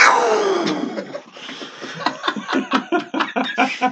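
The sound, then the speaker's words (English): A voice imitates a wildcat roar with a loud, harsh, downward-sliding growl lasting about a second, followed by a string of rhythmic, breathy bursts of laughter. “Let me hear that wildcat again.”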